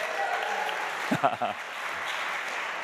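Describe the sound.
An audience claps steadily throughout, a dense, even wash of applause, with a brief voice calling out partway through.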